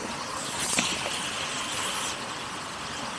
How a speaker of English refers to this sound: The beautiful little creek. I'm about 2 miles on the hike here. You probably hear the water behind me. Can't see it very well, but the waterfall down there. Over there.